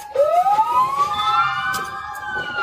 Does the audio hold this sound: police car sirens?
yes